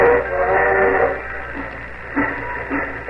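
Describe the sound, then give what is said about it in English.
The 7:55 train pulls out of the station, starting with a whistle-like tone over a steady rumble, then settling into slow, regular chugging bursts. The sound is muffled and thin, like an old recording. “Well, it looks like you're going to miss the 7:55.”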